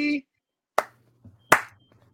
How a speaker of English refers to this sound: Oh, wait. Slow claps get started different. Are they supposed to speed up? I never understood. Yeah, I hate slow claps in movies.